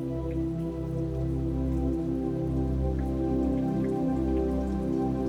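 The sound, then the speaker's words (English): Steady rain patters on a surface, with scattered individual drops ticking over a constant, full wash of rainfall. No one speaks. “You see the clouds slowly roll in, and begin to feel little droplets of rain hitting your skin.”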